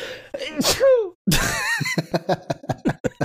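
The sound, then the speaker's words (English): A loud sneeze with a sharp burst and a voiced trailing 'choo', followed by another noisy vocal outburst and a run of short rhythmic breathy bursts. “Bless you.”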